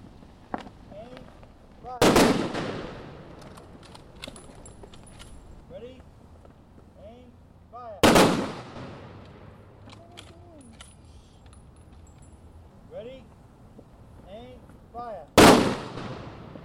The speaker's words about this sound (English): At a Veterans Day observance in Cambridge, Massachusetts, a little girl in the crowd cowers at the frightening rifle blasts.